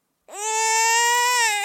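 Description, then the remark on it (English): A single sustained baby-crying buzzer sound, played from a phone, starts from silence, loud and steady with a rich, buzzy harmonic tone, holding one pitch for over a second before dipping slightly at the end. “is yours still the crybabies?”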